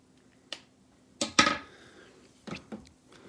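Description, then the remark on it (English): A spoon stirring thick microwave mac and cheese in a bowl, with a few sharp clinks and short scrapes at irregular intervals, fairly quiet, no talking. “Could just be my microwave, but it should thicken up a bit as I stir.”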